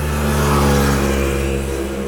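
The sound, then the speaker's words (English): A Jaguar sports car with a 5-litre engine revs loudly, a deep, steady growl holding for about two seconds before its pitch dips slightly near the end. No voices are heard. “Now, let me tell you about the size of this engine, because last week I was on a 2.5-litre motorbike.”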